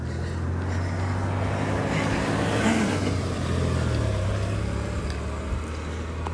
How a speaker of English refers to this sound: Sorry, there's a car behind me in the New Mexico section.